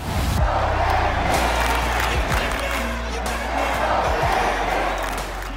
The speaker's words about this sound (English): they came to Yankee Stadium, they heard Yankee fans cheering, and they're like, I like the sound of this.